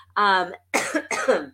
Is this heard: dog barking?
no